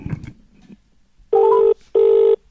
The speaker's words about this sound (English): Let's just dial him up.